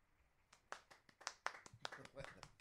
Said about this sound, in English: Extremely polite applause after what I imagine was a smashing play.